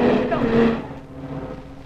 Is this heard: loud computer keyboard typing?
no